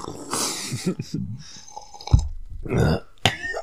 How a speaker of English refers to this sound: Wait, everybody take a sip just to prove that we got coffee for the audio version.